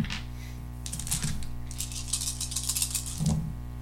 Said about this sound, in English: You just get a... you roll two more dice. Okay. So that's what I roll. I'm going to roll roll. That's my roll.